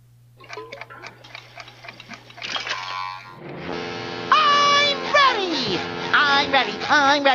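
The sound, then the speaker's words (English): An Alexa smart speaker's SpongeBob alarm tone, set for 11:15 a.m., goes off: a few seconds of soft clock-like ticking and a low hum, then a loud, bright burst of cartoonish voice and music with swooping, sliding pitches. “Alexa, wake me up to SpongeBob alarm tone.”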